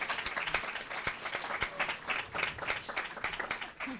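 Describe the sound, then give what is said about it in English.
An audience applauds panelists at the close of a session, many hands clapping in a dense, crackling patter that holds at a fairly even level for several seconds without any speech. “First of all, can we please give a round of applause to our amazing, amazing panelists?”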